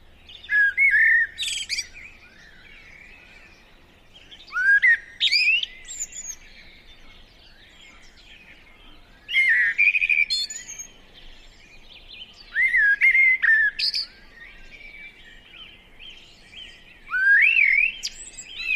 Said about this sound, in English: The blackbird song is liquid gold, probably the best among our garden birds, and certainly a close second to the nightingale. Of all the thrushes, the blackbird is a real virtuoso, delivering a beautiful,